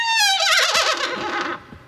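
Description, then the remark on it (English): A single loud horse whinny, a high shrill call that wavers rapidly and slides downward before trailing off, heard alone with no talking. “Look at the horse.”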